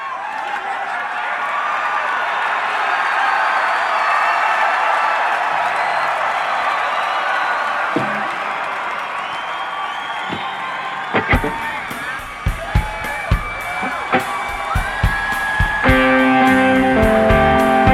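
A huge crowd roars and yells continuously. Then heavy drum hits punch in and music builds while the cheering carries on underneath.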